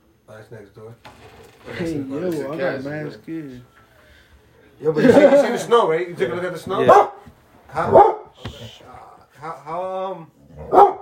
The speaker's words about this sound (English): Shout out to Sheba, local guard dog. Come here. We hire her every time just for the pod.